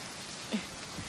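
Rain starting to fall patters down in a steady, soft hiss, with a single slightly louder drop or splash about halfway through. No one speaks.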